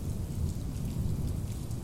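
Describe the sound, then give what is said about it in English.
A steady, deep rumble of rolling thunder with the wind picking up fills the background while dense rain hisses and patters, holding an even loudness throughout with no voices. “I can hear the wind picking up, the thunder. Can you hear it? Rolling, rolling, rolling, rolling.”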